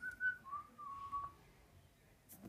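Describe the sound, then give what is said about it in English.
A person whistles an imitation of a bird's song that sounds like a Beethoven melody: a clear higher note, then two lower notes, the last held longest, soft and pure with no talking. “Have you ever heard the bird that sings the Beethoven song? It goes...”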